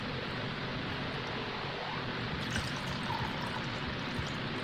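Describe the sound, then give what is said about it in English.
Wine, an Italian-style wine from Germany, pouring steadily into a glass, a continuous splashing gurgle that holds for several seconds with no voices. “And I'm gonna pour me one.”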